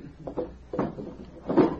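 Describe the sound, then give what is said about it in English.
A table drawer holding a wallet is pulled open, with a few short wooden scrapes and rattles over about two seconds, the last one the loudest. “My wallet they stole is in the table drawer.”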